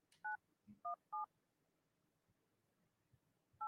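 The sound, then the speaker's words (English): Several short, bright dual-tone beeps of a phone keypad being dialed to place a call, tapped at an uneven pace with a low background rumble and brief gaps between presses. “Okay, let's give him a call.”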